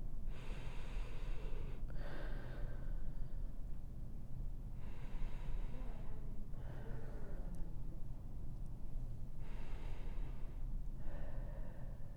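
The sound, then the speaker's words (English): Three slow, deep breaths, each a long airy inhale followed by a drawn-out exhale, evenly spaced over a low steady background hum, clearly audible with no talking. “We're going to start with taking three deep breaths together.”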